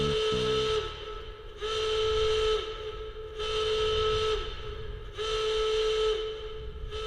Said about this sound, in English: But he doesn't have all the information about the inside, about those defenses. Because just then, a siren begins to wail.